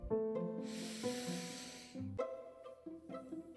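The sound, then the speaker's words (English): A single long, airy breath drawn in through the nose during a guided belly-breathing exercise lasts about a second and a half, a soft hissing rush over steady, gentle instrumental music. “Let's breathe one more time. Breathe in through your nose.”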